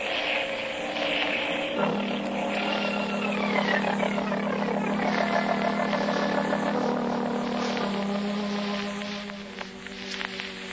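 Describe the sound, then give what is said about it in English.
A seaplane's propeller engine drones steadily and loudly in flight along the coast, a continuous buzzing hum with a slight wavering in pitch. No voices are heard. “I'll have to put this plane down in that cove there and trail the pigeons by daylight.”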